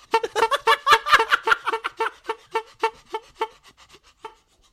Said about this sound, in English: Here's a horn honk.